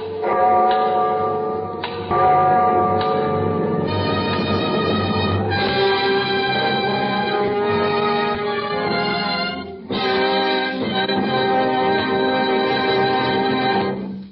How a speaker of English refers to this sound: I hear the clock. The clock.